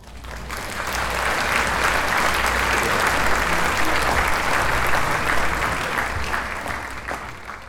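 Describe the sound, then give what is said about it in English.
A sustained round of applause, many hands clapping in a dense, steady wash that swells in over the first second, holds loud and even, then tapers slightly at the end. No talking. “Here's a round of applause for your incredible win.”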